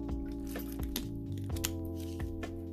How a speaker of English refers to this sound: I'm taking a swig of this water.